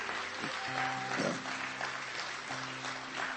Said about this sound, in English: Can you clap your hands one more time unto the Lord?